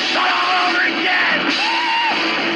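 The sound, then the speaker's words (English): A man, the producer, yells and wails in long, rising and falling cries in the background, behind a dense, noisy background that fills the whole moment. “was our producer and he screamed at that point.”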